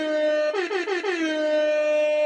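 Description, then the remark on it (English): A loud, brassy hip hop air horn sound effect blares on one sustained pitch, broken early by a quick run of about four stuttering blasts before it holds steady to the end. No one speaks. “Yes, hip hop air horns.”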